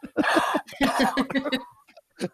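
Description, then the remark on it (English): A person gives a run of loud, exaggerated coughs in quick rhythmic bursts, then pauses and lets out one last short cough, sounding like a playful imitation of coughing. “Brothers so going to start coughing on people.”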